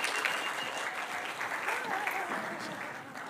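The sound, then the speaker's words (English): A church audience claps together, a dense, steady wash of applause that holds its level for a few seconds before easing slightly toward the end. “Just give me a huge clap.”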